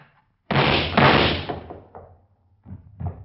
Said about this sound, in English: I said open the door.